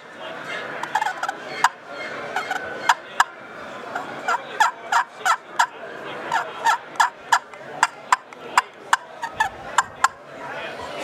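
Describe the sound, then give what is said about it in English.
A wooden scratch box turkey call, worked by holding the striker stationary and moving the box, producing a rapid series of sharp, raspy clucks and yelps with softer purring scratches between them, steady and loud throughout. “I run the striker holding stationary in the box that I move. And I call towards me.”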